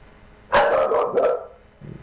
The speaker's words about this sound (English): Dogs again.